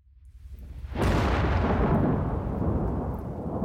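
A deep rumble builds, then a massive, house-shaking crack of thunder bursts out and rolls on loudly, a heavy booming roar that fills the space with no voices present.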